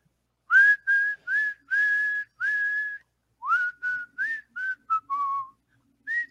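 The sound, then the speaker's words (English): A man whistles the tune of the Hungarian Rhapsody: a run of clear, sustained notes at a steady pitch, then quicker, shorter notes that rise and fall, with no talking. “Wait. Is that the Hungarian Rhapsody?”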